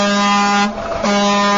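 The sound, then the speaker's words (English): Loud, blaring truck air horns sound together in a sustained harmonic blast, briefly dipping in the middle before resuming at full volume, with no speech. “The honking will continue until freedom improves.”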